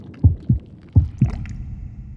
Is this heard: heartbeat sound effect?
yes